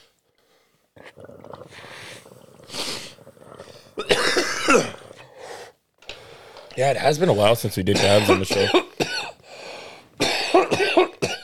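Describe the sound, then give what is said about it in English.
A person coughs in several harsh, raspy bursts after inhaling a dab, mixed in with and following casual speech from another voice. “I'll let you cough in silence.”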